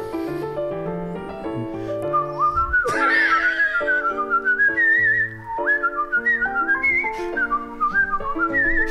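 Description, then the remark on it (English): A person whistles professionally, a lively, flowing melody with smooth slides and trills, loud, over a steady instrumental accompaniment of sustained chords. “first shot at professional whistling.”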